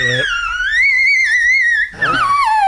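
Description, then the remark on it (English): A simulated child's cry from an iPad: one long, high, wavering synthetic wail that rises and holds, breaks briefly, then starts again and slides downward. No one talks over it. “But this cry came from an iPad. Doesn't even sound like a human child.”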